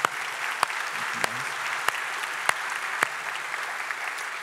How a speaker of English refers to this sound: I don't think it hurt to give these guys a round of applause here.